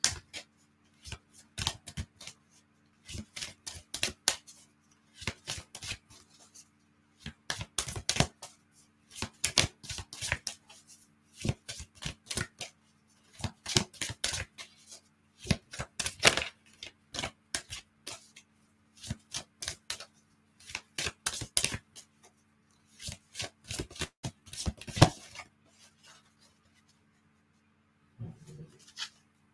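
A deck of oracle cards, the African Goddess Rising deck by Abiola Abrams, is shuffled repeatedly, producing bursts of crisp riffling and slapping that come in quick clusters with short pauses between them, no voices present.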